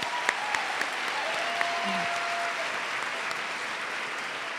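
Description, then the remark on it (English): Steady audience applause for the event's sponsors, the Seattle Times and Women's Funding Alliance, fills the whole stretch, a dense wash of many hands clapping at an even level, with a few sharper individual claps standing out and no voices. “Let's have a round of applause for them.”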